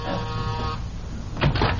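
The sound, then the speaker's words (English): A house door buzzer, pushed by visitors on a New Year's call, sounds once, a steady harsh electric buzz lasting under a second. It is followed by a quieter stretch and a couple of soft rustling thumps. “Push the buzzer, dearie.”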